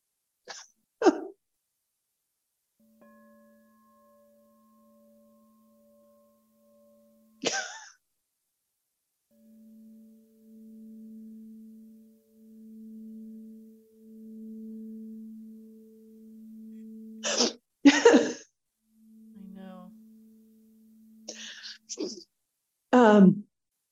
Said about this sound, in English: I wanted this sound that would evoke the sound of the whales with this. And do you want me to play it? Yeah. I'm dying for you to play this bowl. It's a whale bowl. It is stunning. It's a whale bowl.